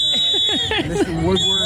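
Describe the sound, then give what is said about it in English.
A shrill, steady whistle blown by a protester holding a "lock him up" sign at a press conference. It holds one long, continuous high note over the overlapping voices of a crowd, with a slight dip in pitch partway through. “There's somebody with a whistle and the sign, lock him up.”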